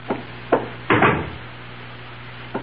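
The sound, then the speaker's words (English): Knocking on a wooden door by a porter delivering a package: two quick raps, then a heavier, longer thump, and after a pause one more light knock, over a low steady hum. “Someone's at my door.”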